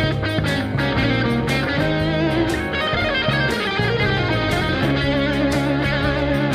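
A dense, loud wall of distorted electric guitar plays fast riffs over steady drums, sustained without pause and with no voices.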